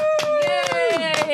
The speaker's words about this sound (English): let's give ourselves the crescendo we've been aching for this entire time and clap for ourselves, please.